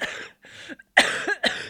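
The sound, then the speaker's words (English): A person coughs repeatedly, a run of four harsh, raspy bursts with brief pauses between them, the later coughs louder and more forceful. “people probably won't hear, but I'm coughing quite a lot”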